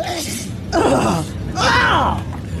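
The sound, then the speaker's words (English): Two loud, forceful sneezes in a row, each a sudden burst of breathy noise with a strained vocal edge, separated by a short pause, over a low background murmur. “I love a good sneeze.”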